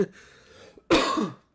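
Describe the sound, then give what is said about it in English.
A single loud, harsh cough bursts out after a quieter, raspy breathy lead-in, then trails off into silence. “Here's the first cough.”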